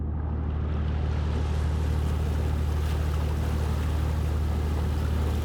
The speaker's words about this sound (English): the ferry boat's just about to come past.